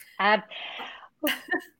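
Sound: sneeze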